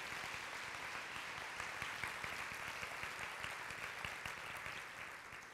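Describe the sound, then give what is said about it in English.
A conference audience applauds Richard Pine of Evergreen Charitable Trust, who funded scholarships, steadily for several seconds, a dense, even wash of many hands clapping at once with no voices rising above it, fading only slightly at the end. “And even though Richard Pine is not with us, let's give him a big round of applause that he hears.”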